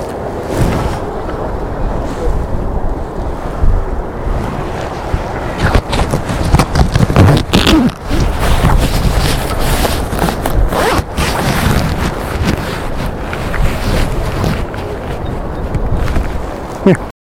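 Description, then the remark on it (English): Sea waves wash in under a strong coastal wind, a loud, steady rushing roar with gusty buffeting and crackling bursts that swell and ease throughout. “So I'm just going to stand and look out the sea for a bit, wait for all these people to leave.”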